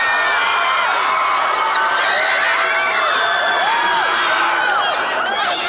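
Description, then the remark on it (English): A crowd at the VMAs cheers and screams wildly after a singer announces her new album's release date, a dense, loud, sustained roar of many high-pitched voices with whoops and shrieks rising above it throughout. “The crowd goes crazy.”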